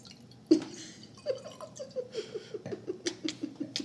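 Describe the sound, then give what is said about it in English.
A drink glugs steadily out of a bottle into a glass, a quick run of rhythmic gurgling pulses after a soft knock, fairly quiet, with no talking. “I'm pouring more. Let's see if you can hear it.”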